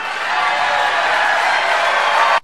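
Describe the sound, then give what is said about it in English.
A large crowd of Donald J. Trump's voter base at a rally cheers and laughs after his call for a shutdown of Muslims entering the United States, a loud, steady roar of mingled voices that holds for about two seconds before cutting off abruptly. “Yeah, so that voter base there that is obviously laughing and cheering, and that's the kind of voter base that he's appealing to, right?”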